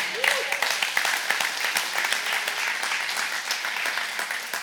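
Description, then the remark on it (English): A church audience applauds steadily, many hands clapping in a dense, continuous patter with a few sharper claps standing out, while a voice murmurs faintly underneath. “Some of you clapping, I'm not sure I believe that, but I'm gonna clap anyhow.”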